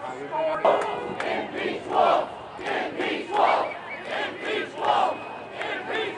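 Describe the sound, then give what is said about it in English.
A large protest crowd with signs chanting in unison at a rally where state lawmakers speak from a podium, with loud rhythmic shouts rising and falling roughly every second and a half over a constant roar of many voices. “The speakers at the podium, many of them are state lawmakers here, are questioning these issues. So a lot of energy out there.”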